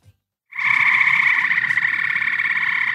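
A frog croaks loudly in one long, buzzing, unbroken trill that starts after a brief silence and carries on steadily to the end, with no voices.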